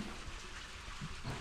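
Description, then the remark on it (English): Water rushing through plumbing upstairs, a faint, steady hiss with a muffled quality and no voices, continuing evenly throughout. “I was wondering what that sound was. I'll make sure we weren't getting flooded out.”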